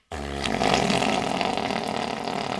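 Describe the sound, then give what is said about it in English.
Someone uses their voice to mimic a neighbor's clapped-out Geo Metro engine starting and revving at 12 a.m.: a rough, sputtering, buzzy roar like a fart can that kicks in abruptly and holds loud for a couple of seconds. “You buy the house and the first night, 12 a.m., you just hear someone start an engine and then just”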